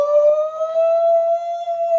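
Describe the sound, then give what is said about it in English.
A police siren wails in one loud, sustained tone that climbs slightly in pitch over two seconds, with no voices. “Ooh, that was like the police siren.”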